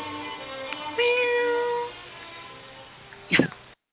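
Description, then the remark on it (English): A cat lets out a drawn-out, wavering meow, clear, then a short sharp burst of noise follows near the end. No one speaks. “Here, kitty, kitty, kitty.”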